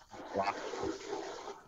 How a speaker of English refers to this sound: Somebody drank water. Yeah, my bad. That's me. Sorry about that.